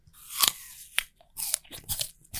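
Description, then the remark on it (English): Crisp crunching of someone biting into an older apple and chewing, with several sharp, irregular crunches spread over a couple of seconds and no talking. “For example, a sound of an apple.”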